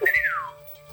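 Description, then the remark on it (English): A voice imitates the whistle of a colorful mechanical bird about the size of a cockatiel, sitting on a barrel: one clear, high tone rises briefly, then glides smoothly downward and fades over about half a second, with no talking around it. “Do you speak English or just whistle?”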